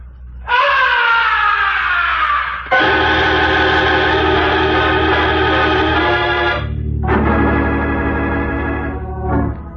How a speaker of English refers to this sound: From way up in the heights of the stage, the opera house was pierced with a blood-curdling scream. That was no ordinary scream. It was the scream of death.